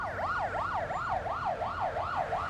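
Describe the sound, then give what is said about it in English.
An ambulance siren yelps in rapid, repeating up-and-down sweeps, steady and fairly loud throughout, with a low rumbling background beneath it and no voices, as an ambulance arrives at night on South Terrace in Adelaide, beside the South Parklands. “An ambulance arrived.”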